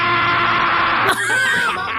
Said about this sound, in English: What did he just say there? And he screamed, bro. I can't.